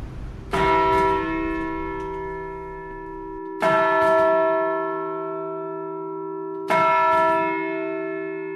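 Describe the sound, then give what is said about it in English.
A two-ton, modern-cast church bell strikes three times at slow, even intervals, each loud clang blooming into rich tuned overtones and a deep hum that lingers between strikes. No voices are present. “Because they're a modern casting, all the harmonics beautifully tuned in there, and the hum goes on and on and on.”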